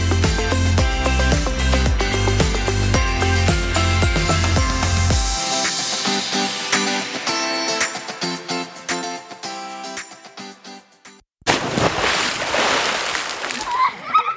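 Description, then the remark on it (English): A musical passage with a steady bass pattern fades out, then a loud splash of water bursts in near the end, a rush of sloshing noise lasting a few seconds. “Ready, set, splash.”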